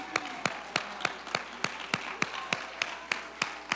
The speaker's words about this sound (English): Why don't you clap your hands unto the Lord right now?